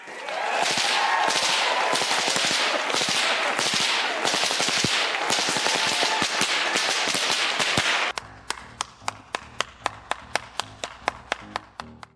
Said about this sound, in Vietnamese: Điều đó có nghĩa là cái tiếng lét đét bạn nghe thấy ở mỗi cú quất roi chính là một sonic boom nhỏ đấy.